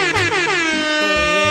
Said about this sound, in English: I can't help but we getting air horns in here tonight.